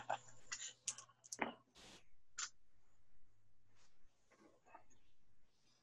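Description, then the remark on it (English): Several sharp clattering clicks in quick bursts as dice are rolled across a table during a tabletop game, moderately loud, followed by quieter rustling and faint handling noises. “Is that what you rolled, or that's the total?”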